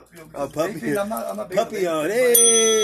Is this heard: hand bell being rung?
yes